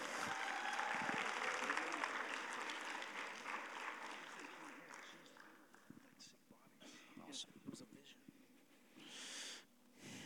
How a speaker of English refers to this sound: Woo-woo! Big hand clap.